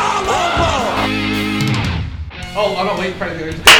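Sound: hand clap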